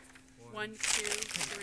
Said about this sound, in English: Now, what I contend is that I can, by folding a piece of paper, I guarantee I can go further than those two, and I'll take 4 seconds to build my airplane.